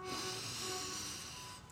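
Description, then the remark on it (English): A steady, airy inhale through the nose, drawn smoothly for under two seconds with a soft hiss, fairly quiet, with no talking, taken as part of a guided breathing exercise. “So let's breathe in together, repeating first.”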